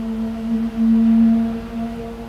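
A steady, buzzing engine drone like a motorcycle, holding one low pitch with humming overtones for about two seconds, briefly dipping then swelling louder before easing off. No one speaks.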